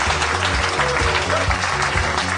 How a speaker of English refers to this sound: Nobody go anywhere. Keep clapping. It's fun.